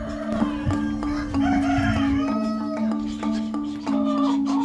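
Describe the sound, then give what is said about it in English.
Dozens of chickens in a home-built coop in Yilan, Taiwan, cluck steadily while being fed at 8 in the morning on a cold, wintry day, a rooster crowing over them, the birdsounds continuous and fairly loud, with sharp clucks and calls repeating throughout and no voices. “are up at 8 in the morning to feed their chickens.”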